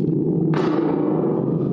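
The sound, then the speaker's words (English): A thunder gourd, an instrument made out of a gourd, produces a steady low rumble that swells into a sudden crackling roar halfway through, then slowly fades, fairly loud, mimicking thunder. “The thunder gourd is back.”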